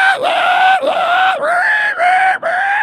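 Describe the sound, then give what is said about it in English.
A person loudly imitates the frantic squealing of a pig being pulled or pushed, a shrill, sustained scream broken by quick gasps into several rising-and-falling bursts, without any other talk. “And so you know what happens when you try to pull a pig or you push a pig? They go nuts. They have squealing fits.”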